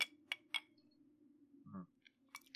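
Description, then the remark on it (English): Several quick glassy clinks of glasses touching in a toast over a quick shot, a burst of three close together, then a pause and two more near the end, over a low steady hum with a dull knock in between. “Quick shot. Clinky. Cheers, guys, on everything that we've accomplished.”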